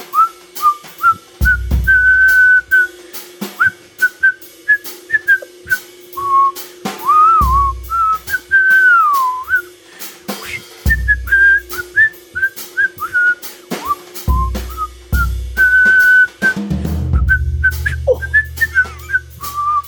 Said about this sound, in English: My whistling is becoming weaker. I know. I need to wet my whistle.